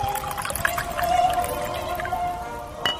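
Wine pours steadily into a glass for about three seconds, a close gurgling stream with a faintly ringing tone, ending in a brief splash. No one speaks.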